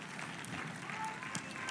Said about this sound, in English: Come on, give a clap offering of praise to the Lord.